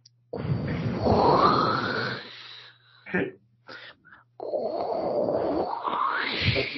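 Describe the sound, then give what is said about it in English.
A voice imitates ocean waves: two long, rough whooshing swells with rising, moaning tones, separated by a few short breathy bursts and brief pauses. “Next we have Ocean Waves.”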